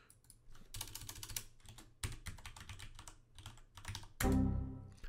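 Rapid typing on a computer keyboard while entering an administrator account password, a steady patter of crisp key clicks in bursts, fairly quiet, ending with a louder thunk near the end. No voices.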